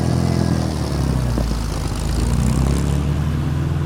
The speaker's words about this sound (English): Elias jammed the engine into reverse, backing away rapidly.